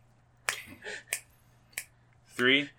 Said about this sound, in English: All right, crunch time for a clap.